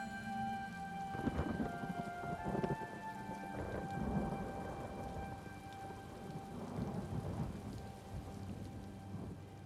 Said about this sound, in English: As if it was meant to be, a rumble emanated from the green skies, and a light inky rain once again began to fall on the endless stacks that held the small party, their fates now tied together.